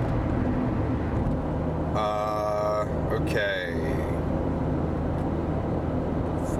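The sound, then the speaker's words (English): A steady, low rumble of road noise inside a moving car runs throughout, with a brief spoken word and a few tonal electronic sounds rising over it midway. “Welcome to the 21st century when we can be in a car.”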